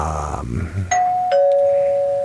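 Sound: doorbell ding-dong chime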